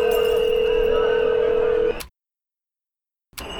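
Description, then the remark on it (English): A telephone ringing on the line: a steady electronic ringback tone holds for about two seconds, cuts to silence, then starts again, with a faint hissy line noise underneath. “Pick up the fucking phone!”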